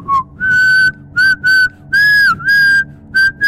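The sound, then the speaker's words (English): A parrot whistles a loud run of clear notes, some short and chirpy, others held and gliding, in a quick uneven rhythm with no talking. “I can whistle and I have no lips.”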